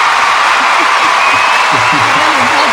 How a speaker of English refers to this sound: That's kind of like an ovation. It's kind of Super Bowl-esque. All right, that's good. They deserve applause. I don't know. That's a lot of applause.